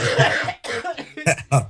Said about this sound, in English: coughed up a lung. I hit that vape right as she said that.